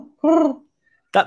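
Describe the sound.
A person imitates a pigeon with a single breathy, hooting coo, loud, followed by a brief pause and a short burst of voice.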